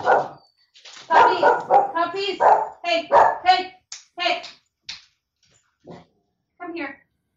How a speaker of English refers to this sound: Puppies, hey, come here.